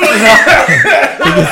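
A person coughs hard several times in a rapid, raspy fit, each cough loud, with harsh breathy bursts following one another with hardly a pause.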